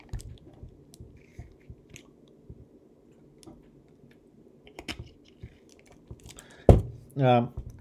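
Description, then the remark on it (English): Sipping a diluted Gatorade sports drink: a run of small, wet mouth clicks and swallows, then a sharp slurp followed by a short, satisfied voiced exhale. “And that explains, see, this whole thing was about explaining why I'm sipping on a Gatorade at the moment, a diluted one at that.”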